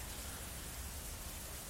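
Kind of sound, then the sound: nature, heavy rain falling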